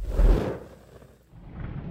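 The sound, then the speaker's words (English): A deep, heavy rumble of thunder from an oncoming storm swells up loudly, fades into a low murmur, then builds again toward the end, with no voices present. “Mary awoke to the sound of thunder.”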